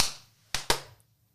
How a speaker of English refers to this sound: All right, clappy claps.